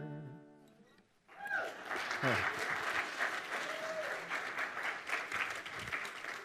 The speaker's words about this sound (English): Thank you, but I know sympathy applause when I hear it. I appreciate that.